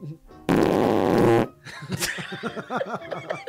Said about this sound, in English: Damn! That's a dad fart.